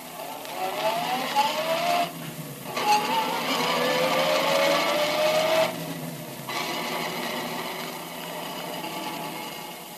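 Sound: car engine driving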